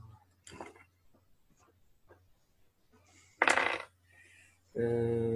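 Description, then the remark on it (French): Three six-sided dice are rolled onto a table for a luck score, clattering in a couple of quick bursts, a brief rattle then a louder scattering tumble, followed by a voice starting to speak. “Lancer 3D6 et multiplier par 5, ça vous donne un score de chance.”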